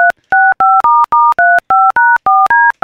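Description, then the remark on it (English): A phone number is punched in on a touch-tone keypad: about ten short, loud dual-pitched beeps in a quick, steady rhythm, each separated by a brief pause, with no voices. “I know my mom's phone number.”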